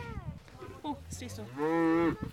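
A cow moos, a drawn-out, rising call with a strong harmonic tone that swells loud and then breaks off, preceded by softer grunting lows.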